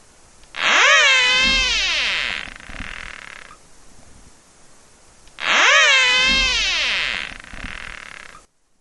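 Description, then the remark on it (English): Two loud whistles from a 2-inch-long caterpillar, each lasting about two seconds, with a buzzy, harmonic-rich tone that rises and then slides down in pitch, separated by a brief quiet gap. Such whistles have been measured at over 80 decibels from 5 centimeters away. “In a laboratory experiment, birds responded to caterpillar whistles by jumping away and abandoning their predation attempts.”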